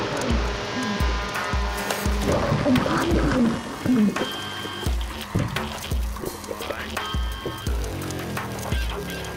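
Industrial-style soundtrack music, driven by a steady, heavy low thump about twice a second beneath harsh metallic drones and gritty noise, loud and continuous with no voices.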